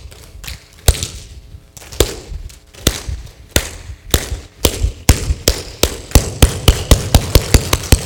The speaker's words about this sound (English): Right? Okay, what is that called? It's called, well, or an applause, clapping, yes. Clapping, applause.